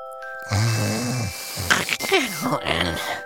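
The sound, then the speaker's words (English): Loud, rough snoring sounds from a voice, a drawn-out groaning snore followed by several shorter raspy, snorting breaths, like a person imitating snoring. “Do you like to snore?”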